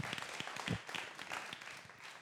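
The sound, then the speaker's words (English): An audience breaks into steady applause for the team after their time with the kids, a dense wash of many hands clapping at once, with a few sharper claps standing out from the crowd noise. “Can we give the team one more big round of applause for that wonderful time with the kids?”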